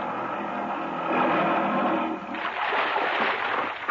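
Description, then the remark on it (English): A boat pulls up beside a low rocky ledge where another boat is tied, with a steady churning wash of water, then louder, choppier splashing against something solid in the final seconds. No voices. “What were you so busy shoving down in the water between your boat and that ledge when we pulled up?”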